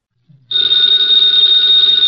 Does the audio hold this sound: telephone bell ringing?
yes